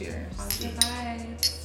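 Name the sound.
glasses clinking together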